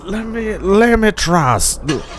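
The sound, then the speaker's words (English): A voice imitates a Hemi car engine sputtering back to life after stalling, with a few rising and falling revving bursts and a breathy hiss, fairly loud. “My car has seemed to stop. I'm gonna just... There. Get started again.”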